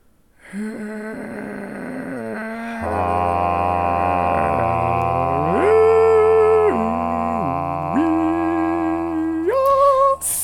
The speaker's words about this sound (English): Is that a dog? That's his dog, yeah.